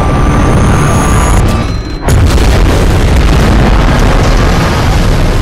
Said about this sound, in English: The ship is then rocked by a beauty of a torpedo strike.